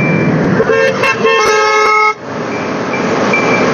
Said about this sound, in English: We'll be crossing Markham Road. I'm just waiting for the light to change, friends, listening for the traffic.